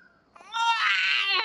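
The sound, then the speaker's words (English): A child screams upstairs in one long, high-pitched wail that swells in quickly and holds steady and loud for about a second, with no talking over it. “So that's probably what's happening with the screaming upstairs.”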